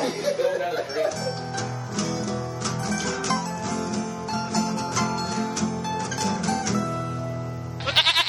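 two goats bleating

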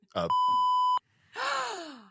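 censor bleep tones

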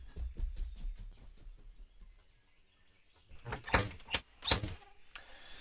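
door opening and closing

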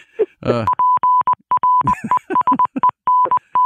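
morse code SOS beeps

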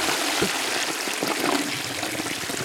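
toilet flushing

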